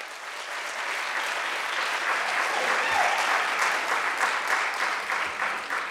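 Sustained audience applause, a dense steady patter of many hands clapping at an even loudness for several seconds, with no voices standing out.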